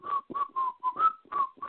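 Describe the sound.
Someone whistles a short part of a number-one pop song of 1987, a bright wavering melody of about seven quick notes with small breathy gaps between them, no talking over it.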